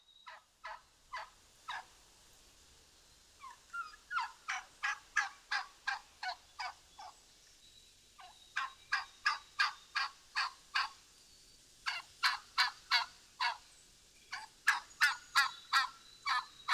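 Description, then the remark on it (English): Wild turkeys gobble in repeated rapid, rattling bursts, several series over the span, loud, with short pauses between them and no talking. “I mean, I would love to live in a place where turkeys roost in the trees in my yard.”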